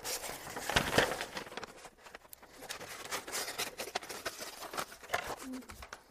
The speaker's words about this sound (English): All right, this is called a roll, and I can roll it out. So roll out, and then I can either rip it off, or sometimes we say tear it off. But today, I'm actually just going to use scissors and cut it off. So here we go.